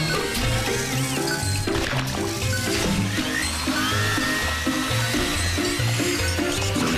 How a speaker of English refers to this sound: It's a vacuum cleaner. Oh, it's much more than that. Watch.